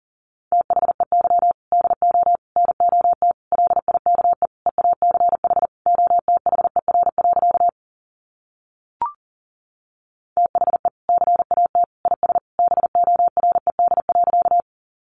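Rapid Morse code at 40 words per minute: a single steady mid-pitched tone keyed on and off in fast dots and dashes, broken by a short silence with a faint click before the sending resumes.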